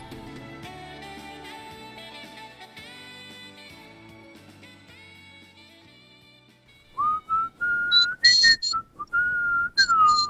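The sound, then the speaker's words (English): A person whistles a short melodic tune in several clear phrases with brief pauses, following about seven seconds of dense instrumental music that ends abruptly. “I was going to whistle the theme, but let's not do that either.”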